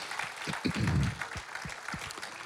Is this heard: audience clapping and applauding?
yes